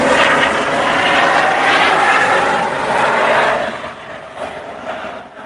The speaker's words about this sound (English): I'm gonna let the helicopter go.